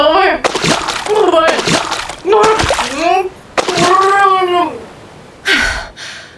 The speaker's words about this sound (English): allowing her double's own momentum to propel her over the side of the dock and into the ice-cold water of the Atlantic.